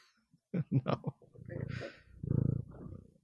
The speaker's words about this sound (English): my cat has something to say to you. Yeah. Can you hear her?